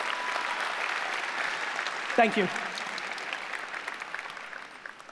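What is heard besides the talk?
audience applause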